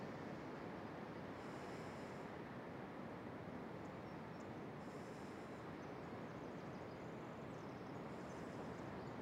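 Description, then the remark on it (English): Steady, rushing surf on a rocky seashore, a continuous wash of breaking waves with faint swells rising now and then, soft, with no voices. “There's lots of gorgeous sea enemies on these rocks around me.”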